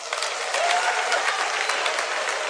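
Steady applause from the men in an audience, clapping to show they are loyal to their women: many hands in a dense, continuous patter that holds at a fairly even level throughout, with a few faint whoops mixed in.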